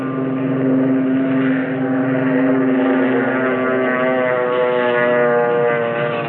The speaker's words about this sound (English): This is the Akagi. This vessel carries up to 60 combat planes. Step back, please. That torpedo bomber is taking off.